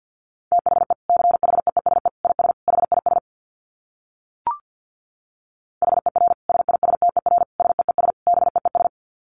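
Rapid Morse code at 50 words per minute, keyed on a single steady mid-pitched tone, sent in two fast bursts of short and long beeps, separated by a pause with one brief click.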